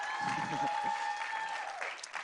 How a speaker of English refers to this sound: Since we've given up for the worship twice, might as well make it three times. Come on, let's give a round of applause for worship.